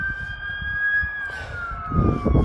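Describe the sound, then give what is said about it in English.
About 12 to 15 emergency vehicle sirens wail together in a city, heard from up high, their steady tones slowly sliding downward, over a constant low rumble of traffic that swells louder near the end. No one speaks. “So sorry, there's about 12, 15 different sirens going on.”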